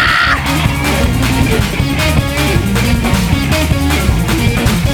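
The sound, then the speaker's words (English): A crowd screams and yells continuously at full volume, a dense wall of shrill voices sustained for several seconds, with a steady rhythmic thumping running underneath. “Everybody scream!”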